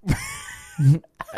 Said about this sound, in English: Great, a fart.